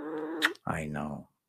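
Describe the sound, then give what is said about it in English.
A rescue cat being held growls in two drawn-out, moaning bursts, fairly loud, separated by a short pause with a brief sharp noise between them. “You don't like to be held, I know.”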